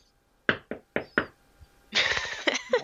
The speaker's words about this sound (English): We're jinxing it. Knock on wood. Yeah, knock on wood. Knock on...